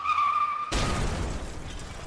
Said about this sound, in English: A car crash. Two vehicles in a head-on collision. The perspective paints you as a bystander to the wreckage. Perhaps you saw it coming, or perhaps you only heard it.